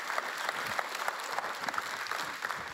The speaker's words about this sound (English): Let's give a warm applause.